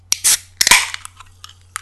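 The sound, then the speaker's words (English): A can of Iron Brew soda cracks open: a sharp metallic click, a short burst of hiss, then a louder pop with fizzing that fades, followed by a few faint clicks. No one speaks. “But before we do, as is now tradition, get the old Iron Brew on the go.”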